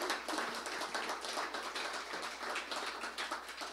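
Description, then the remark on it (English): An audience claps steadily for a few seconds, a dense, even patter of many hands at a fairly soft level, with no voices over it. “You guys, you got to clap better than that.”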